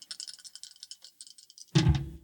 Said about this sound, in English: So you're rolling two dice, reckless.